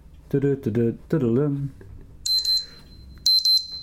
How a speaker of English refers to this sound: Okay, are we on to our timer? We have got a timer. And we've got 7 seconds, no repetition. looks like it's about to go.